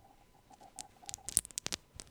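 Mike and Ike candies being shuffled around in a bag, a soft scattered patter of clicks and rustles that grows busier and louder toward the end, with no talking.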